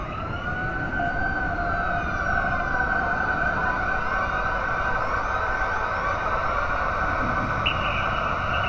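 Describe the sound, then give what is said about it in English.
An emergency siren, far off but getting closer, wails continuously and fairly loudly with sweeping, overlapping tones throughout, over a low rumble of traffic, with no one speaking. “Then, I hear a siren, far off but getting closer, and a notion buzzes in the back of my head.”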